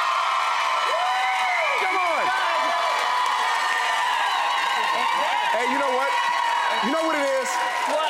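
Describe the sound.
A TV show's studio audience erupts in sustained, loud screaming and cheering to vote for one of two competing teams, with high shrieks and whoops rising and falling over a dense wall of voices for several seconds.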